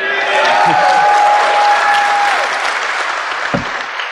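A crowd breaks into steady, loud applause, a dense wash of clapping that holds strong for several seconds before thinning slightly, with a faint whistle and a few voices mixed in.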